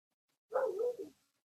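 A dog lets out one drawn-out bark, close and fairly loud, trailing into a shorter second yelp before silence. No one speaks.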